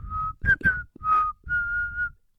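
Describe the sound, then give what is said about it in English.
A person whistles a short, simple tune of four clear notes, steady tones with a couple of quick rising slides in the middle, moderately loud with no talking. “Can you whistle?”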